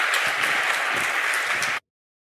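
A crowd at New Church applauds a woman and a group of people in a steady, dense burst. The applause is loud and even throughout, then cuts off abruptly into silence after a couple of seconds.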